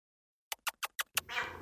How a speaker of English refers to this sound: Oh, shh. I think I hear her. Kitty, kitty? Are you down in the basement? Come on up. Come on, kitty. Here, kitty, kitty. Come on.